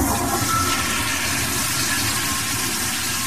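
A toilet flushes loudly, a steady rushing, gurgling surge of water that fills the whole few seconds without any talking.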